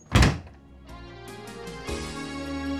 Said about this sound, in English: Just please close the door.